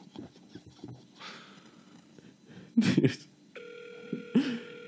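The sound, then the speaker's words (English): A steady electronic ringback tone from an outgoing long-distance phone call, sounding over a line for the last couple of seconds, after faint rustling and a couple of short handling bumps. “Oh, it's still ringing.”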